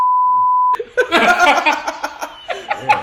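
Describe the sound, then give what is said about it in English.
A steady, high-pitched censor bleep holds for under a second, loud and clean, then cuts off abruptly into a burst of lively laughter from several people. “No, I put the beep in there.”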